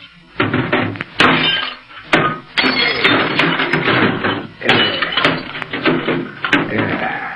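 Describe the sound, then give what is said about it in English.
A shortwave radio set is smashed: a rapid, irregular series of loud cracking and clattering blows, with crunching, rattling debris filling the gaps between hits. No one speaks. “Yeah, to make sure nobody else hears, I'm going to wreck this short wave set.”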